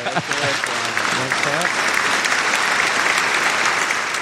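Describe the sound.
A crowd applauds steadily for about four seconds, a dense, continuous wash of clapping with a brief cheer or voice rising over it at the start.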